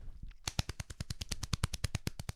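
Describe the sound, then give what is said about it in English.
A drum roll sound effect: a quick, steady run of sharp, loud drum hits, about ten per second, starting after a brief quiet moment and playing alone without any voices. “Did you hear the drum roll in episode one of our podcast?”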